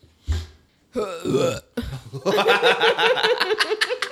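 A loud belch rumbles out in a couple of guttural bursts, followed by several seconds of hearty laughter from a few people.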